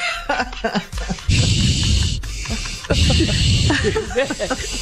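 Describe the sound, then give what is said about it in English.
A voice imitates the heavy, wheezy breathing of someone going up steps: two long, raspy, hissing gasps with a rough throaty edge, loud against scattered chatter and chuckling voices. “Why are you breathing like that? That's me when I go up the steps.”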